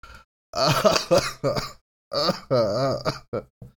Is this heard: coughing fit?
yes